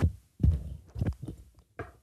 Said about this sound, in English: My ankle's bones making a... Listen to that. Creak, yeah. Creak.